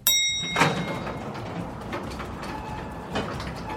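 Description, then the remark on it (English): Elevator doors slide open as the button is released, with a steady mechanical rumble, a short bright chime at the start and a couple of soft thuds as the panels move and settle, fairly loud. “I let go of the button to let the doors open.”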